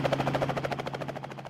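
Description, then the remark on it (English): Rapid, steady rotor thumping with a low engine drone underneath, like a helicopter giving rides at a small-town event, pulsing evenly throughout with no voices. “Our guests and residents got to enjoy the kids area, band, numerous vendors, the DB contest, a dino contest, burnout contest, and of course, the helicopter rides.”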